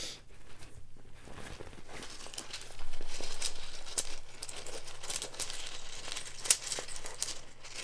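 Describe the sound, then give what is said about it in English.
Shuffling of rune stones to draw one, small hard pieces clicking and rattling together amid soft rustling for several seconds, with no talking. “Shuffling through.”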